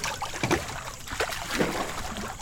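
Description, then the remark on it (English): Warm water sloshing and lapping in a hot tub as people make waves, with irregular splashy surges over a steady watery wash, moderately loud, and no voices. “that's why we're in the hot tub”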